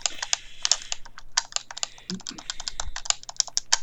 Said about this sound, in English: that was me on my controller playing Crazy Taxi for the Sega Dreamcast